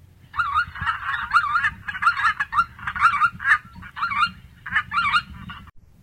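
A flock of greater white-fronted geese calling: a steady chorus of high, yelping, laugh-like notes, overlapping and repeated for several seconds over a low background rumble.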